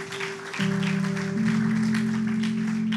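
A crowd at an evening worship service claps steadily throughout, a dense wash of applause, while sustained organ-like chords hum underneath and swell slightly partway through.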